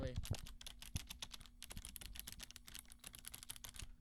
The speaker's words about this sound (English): Okay. Here's what a mechanical keyboard sounds like real quick, by the way.